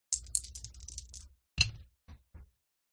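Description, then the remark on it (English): Several real six-sided dice (d6s) are rolled and clatter across a hard table in a rapid rattling burst, then a sharp knock and two softer bounces as the last dice settle. Fairly loud, with no talking. “See, I rolled all my d6s, and these were the two that were rolling. This is what you get when you roll actual dice.”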